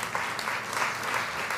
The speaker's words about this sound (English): And if you want prayer, come on, clap your hands, give God praise.